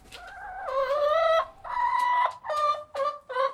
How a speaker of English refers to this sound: The two head honcho hens are currently in a stalemate. I'm sure they're going to be bickering until they figure out who can still be head hen,